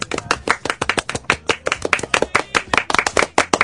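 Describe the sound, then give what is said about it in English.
A short burst of applause: dense, uneven clapping from a few people, crisp and fairly loud, lasting a few seconds with no voices over it. “Where's his applause?”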